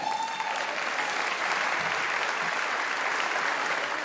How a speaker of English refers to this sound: The people clapping are the ones who work there.